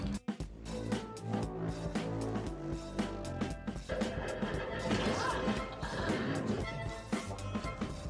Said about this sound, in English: There's no images. And now we're back to smashing robots.